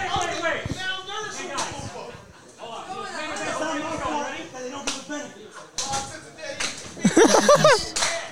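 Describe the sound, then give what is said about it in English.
Several sharp, fleshy slaps of a man's hand on his own bare belly, coming at irregular intervals, fairly loud, over a background of people talking and laughing. “He's slapping his belly.”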